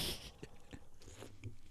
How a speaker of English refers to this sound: Let's have a slurp.